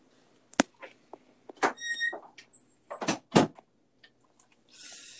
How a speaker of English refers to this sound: Hold on, I'll be back. I need to close my door.